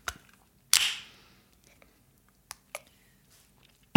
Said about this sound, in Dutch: Even een nieuw biertje openen.